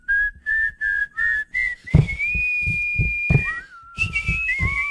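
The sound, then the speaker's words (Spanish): Someone whistles a bright melody, starting with a run of short, evenly spaced notes, then sliding into longer held tones over a soft rhythmic tapping beat underneath. “Porque tú ni silbando tienes ritmo.”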